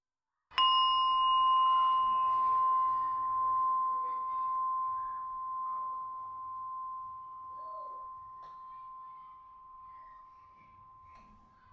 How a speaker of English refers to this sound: Close your eyes. Listen to the bell.